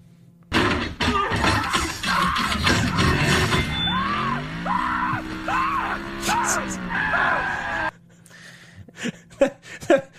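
A man screams in frantic, repeated bursts as he is thrown from a car and Bumblebee transforms and grabs him, over loud crashing, banging and mechanical roar, all intense, before the chaos cuts off abruptly into quieter scattered noises.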